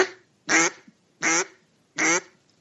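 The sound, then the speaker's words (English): A person imitates a duck into a phone with three short, relaxed quacks, evenly spaced, each a brief nasal burst separated by quiet pauses. “So now there's like a short little, like, I'm relaxed quack, like, which is what I was just doing.”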